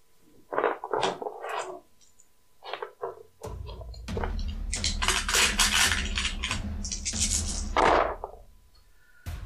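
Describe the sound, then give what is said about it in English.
Several sharp clicks and rattles, then a longer continuous clatter of dice tumbling and rolling across a hard table for a wits and awareness roll, fairly loud, with no voices. “Go ahead and make for me a wits and awareness roll.”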